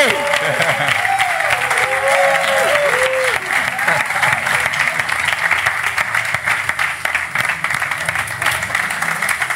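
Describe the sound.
Loud, sustained audience applause welcoming a singer, a dense wash of clapping that holds steady for the whole stretch, with some cheering and whooping voices rising over it in the first few seconds.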